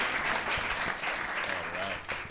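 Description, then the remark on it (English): An audience at a genre filmmaker panel claps steadily, a dense wash of many hands with no clear individual beats, holding loud and even for a couple of seconds. “Hey, one more round of applause for our”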